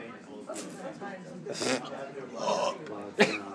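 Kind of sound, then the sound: human body sound, belch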